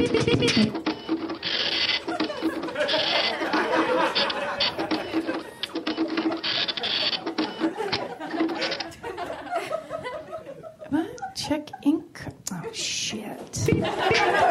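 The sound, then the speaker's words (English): A computer printer whirs and buzzes loudly in rhythmic mechanical bursts for several seconds, before fading into scattered chuckles and brief voices. “Printer solo.”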